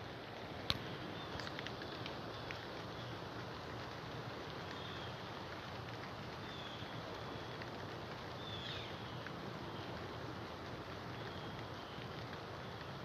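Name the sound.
rain falling outdoors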